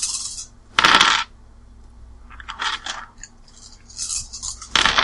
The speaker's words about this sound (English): It's a lot of dice.